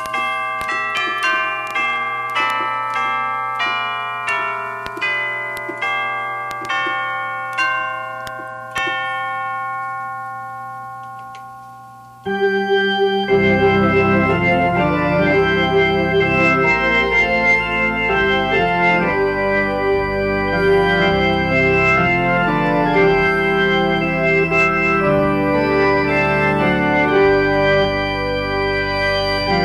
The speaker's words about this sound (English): Turning the page, it's the great hymn, Lead On, O King Eternal. Lead on.